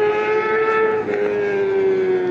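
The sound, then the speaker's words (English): A fast motorcycle roars past, its engine a loud, steady, buzzing whine whose pitch sags slightly over a couple of seconds. No one speaks. “I don't know if you could hear that motorcycle, but he was going fast.”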